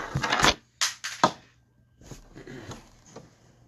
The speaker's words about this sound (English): We have dropped the dice. Tactical issues.